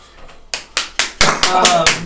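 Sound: hand clapping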